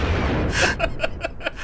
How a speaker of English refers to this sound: you hear the sound of... And right behind the man, literally 5 feet behind him, a bomb lands.